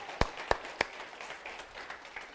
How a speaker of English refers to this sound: And that's the last time I'm going to make you clap for a while, okay?